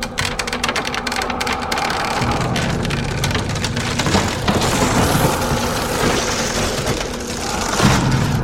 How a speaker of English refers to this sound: We watched as the ghosts came to rest in front of a door to a townhouse. The mist around their bodies seemed to swirl, causing the ghosts to become solid creatures and no longer made of mist. Then they smashed the door open.